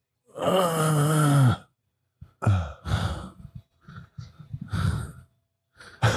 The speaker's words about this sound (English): You're breathing like you're climbing up a stairs right now.